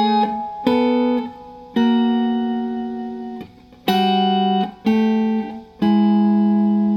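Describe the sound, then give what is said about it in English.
An electric guitar strums a series of blues chords, about six sharp strikes, each left to ring out and sustain before the next, with no talking over them. “So that's a very, very pretty sound. And you'll recognize this chord by these, put the bass note in.”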